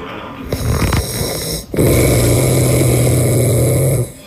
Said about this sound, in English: If I wake up in the middle of the night and can't go back to sleep because he's snoring